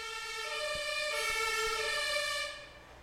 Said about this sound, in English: Sorry, there's an ambulance going past.